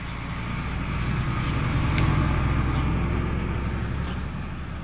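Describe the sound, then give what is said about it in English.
A tow truck engine, with a van on the back, idles with a steady low rumble and a broad wash of mechanical noise, holding even throughout, with no voices. “You see that wrecker down there?”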